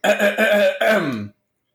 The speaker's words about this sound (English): and let me clear my throat.